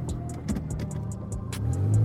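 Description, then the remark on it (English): A car engine rumbles and swells louder toward the end as it pulls away and accelerates, heading east on Union Avenue, with a quick run of regular ticking clicks over the top. No one speaks. “let's hop back into the car and head east on Union Avenue.”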